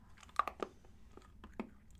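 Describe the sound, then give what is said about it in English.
Wet chewing with several crunchy bites at an uneven pace as chalky candies that turn into gum, a yellow and a red one at once, break down in the mouth; no talking, just quiet mouth sounds over faint low background noise. “So you put them in your mouth and you start chewing them and they are chalk and gross.”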